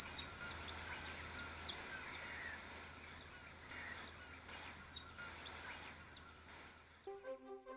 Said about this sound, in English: very bright coloured thrushes, very loud call when they do their alarm call when they're disturbed